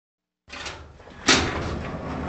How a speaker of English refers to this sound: Yo, open the door, man. This ain't no time to be playing pool.